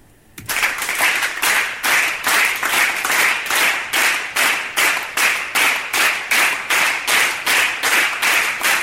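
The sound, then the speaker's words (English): A live crowd claps in steady unison, a loud rhythmic beat of about three claps per second that starts abruptly and keeps going without letting up. “This crowd is a bunch of excitable monkeys.”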